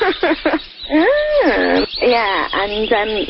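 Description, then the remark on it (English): A warbling, whooping bird call, apparently imitated by a human voice and presented as a bird from the Croydon area: a few quick chirps, then long rising and falling swoops, loud, with no other sounds around it. “The call of this bird certainly gets the male's attention.”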